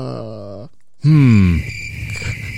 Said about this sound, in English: Oh, no, that's why we have the cricket sounder now.